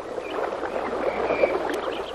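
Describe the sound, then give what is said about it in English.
Fast river water rushes and churns through a narrow gorge with rocks and waterfalls, in a steady, continuous roar, with small splashes and gurgles breaking through. It is moderately loud, with no voices. “They arrive at a narrow gorge in the river, where treacherous, fast-moving currents, rocks, and waterfalls impede their progress.”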